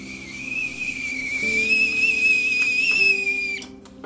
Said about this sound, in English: Je t'aime beaucoup le café. I love the way that the teapot boils my water. That, my friends, is the sound of heaven being poured into a delicious cup of Nescafe.